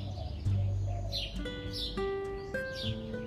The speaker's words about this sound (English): As I stand here and listen to nature all around me, I realize the birds, they're doing this for their Creator.